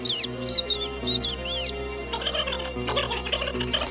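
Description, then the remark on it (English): A sparrow chirps: several quick, squeaky high-pitched chirps, then a busier flurry of chattering chirps, over a steady low background hum. “But then all of a sudden, here comes the sparrow with the bad news.”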